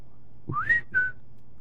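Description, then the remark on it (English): A Periscope app notification tone on a smartphone sounds alone: two quick whistle-like notes, the first sliding upward in pitch and the second a brief steady high note, moderately loud over faint background hum. “Forgot to turn my phone off. That was my, what is that? Periscope.”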